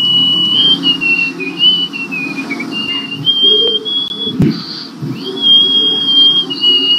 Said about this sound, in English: Yeah. That's out of her nose. Yeah. She's blown a whistle out of her nose.